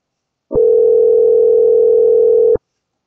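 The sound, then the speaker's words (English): A single steady electronic ring tone of an outgoing phone call that goes unanswered, one unbroken two-second burst of a low hum-like pitch that cuts off cleanly, with no voices around it. “I feel like this is gonna be most of this episode is me calling people and them not answering the phone.”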